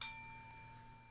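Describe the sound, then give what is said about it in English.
A single bell struck once on a countdown to start a scene, its bright ringing tone starting sharply and then fading slowly over about a second, heard alone with no voices. “So we're going to start the scene, and you're going to ring the bell on 3, 2, 1.”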